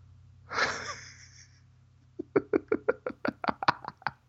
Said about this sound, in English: I was coughing, so I couldn't laugh immediately.